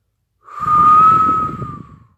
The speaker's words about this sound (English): Damn, it took all my energy to get that whistle out. I had to pull that in from my last lifetime. Shit, that was a lot. That came from all dimensions I exist. That was a goddamn whistle.